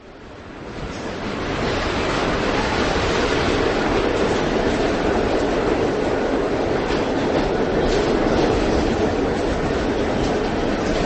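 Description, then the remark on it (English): A subway train rumbles along the tracks in a steady, dense roar with faint rattling, fading in over the first second or so and staying loud, with no voices. “I was on the subway the other day, and I didn't have a book with me, so I didn't have anything to do but to look at the other people who were riding with me.”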